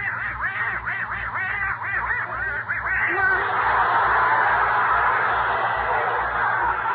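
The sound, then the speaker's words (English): Herman, a little duck, quacks downstairs in front of the fireplace on the night before Christmas in a quick, nasal run of about a dozen squawks for three seconds, then the sound dissolves into a louder, steady rasping chatter that continues to the end. “Only Gracie and Herman, their little duck, are still downstairs in front of the fireplace.”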